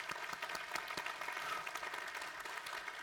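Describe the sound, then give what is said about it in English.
A crowd applauds steadily after a mention of Jesus Christ, many hands clapping at once in a dense, continuous patter that holds at an even level throughout, with no voices standing out. “And what's so interesting right now, clap for that, amen. Good night, clap.”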